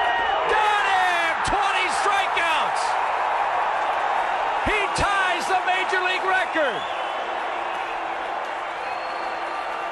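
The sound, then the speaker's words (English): A huge stadium crowd roars loudly and continuously after pitcher Kerry throws a slider for strike three, his 20th strikeout, with whoops, shouts and scattered sharp claps rising over the din, the cheering holding strong for the whole stretch. “And Kerry threw a perfect breaking ball, slider, strike three, 20 strikeouts, and bedlam began.”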